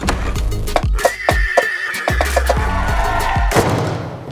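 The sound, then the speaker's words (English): A horse lets out a long, wavering neigh that rises and trails off, with a few dull thumps and hoof-like knocks around it, fairly loud, among horses indoors at a party. “This party sucks. There's all these horses inside.”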